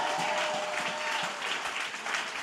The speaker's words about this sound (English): If that's you, give the Lord another hand clap one more time.